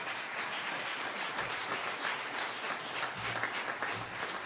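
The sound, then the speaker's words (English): A crowd claps steadily in praise of the Lord, a dense, even wash of many hands filling the whole stretch without pause or a clear beat. No one speaks over it. “Let's give the Lord one more hand clap of praise.”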